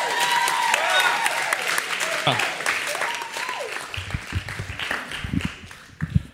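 An audience breaks into steady, sustained applause, dense clapping with some cheering and whistling mixed in, loud throughout before thinning toward the end.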